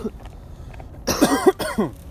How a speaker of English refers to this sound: Yo, this is the most I've coughed in a minute, man.